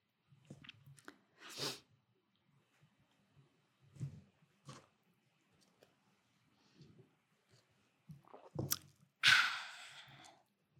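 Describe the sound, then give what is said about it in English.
Quiet mouth sounds of someone sipping coffee: scattered soft slurps and swallows separated by pauses, ending with one louder, drawn-out slurp. No one speaks. “Some good coffee, y'all.”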